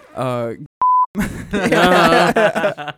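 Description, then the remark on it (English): A short, steady censor bleep covering the name of a website, a single pure electronic tone lasting about a quarter second, cuts in between stretches of talking, with voices speaking just before and right after it. “Can you beep the website? Just to be assholes to the people.”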